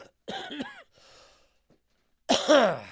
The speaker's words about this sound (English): Man, I'm so tired of coughing.